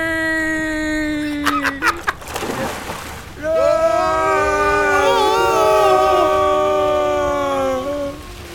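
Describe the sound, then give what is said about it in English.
Water splashes and sloshes in a rushing burst midway as characters are jostled, soaked and carried down a dark passageway, while several voices let out long, drawn-out yells before and after, loud, as though tumbling down a dark water slide. “If you've ever been in a kind of dark water slide, boy, can you relate to these characters.”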